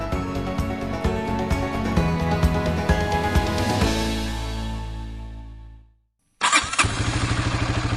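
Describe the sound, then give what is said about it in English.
A loud motorbike engine runs steadily, then winds down into brief silence before abruptly starting again and settling into a rhythmic, chugging idle. No one speaks. A postman rides the motorbike to deliver mail to residents in Lao Zhishan Town, Jiangsu Province, eastern China. “a sturdy man carrying a green shoulder bag, rides a motorbike to deliver mail to residents living on land in Lao Zhishan Town, Jiangsu Province.”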